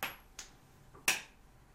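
A coin is flicked and caught to decide the first pick in a mock draft, landing heads: three sharp, bright clicks over less than two seconds, the last one loudest, with a faint high ring trailing the first. No one speaks.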